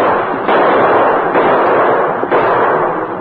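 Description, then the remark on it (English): Several gunshots, fired over the heads of stampeding cattle to turn them away from quicksand, ring out at uneven intervals, sharp cracks over a loud, continuous roar of noise, with no one talking. “Keep shooting, Tonto.”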